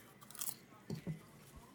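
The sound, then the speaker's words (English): Crisp crunching of someone chewing buttery popcorn, a few quick bites and chews in irregular bursts, moderately loud against a quiet background. “Yeah, it's just the right amount of crunch and butter at the same time.”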